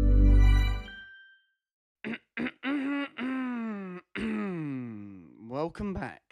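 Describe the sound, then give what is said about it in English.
A single loud cough at the start, followed by a short pause and then a person speaking. “You can't start an intro by coughing and then saying, welcome back.”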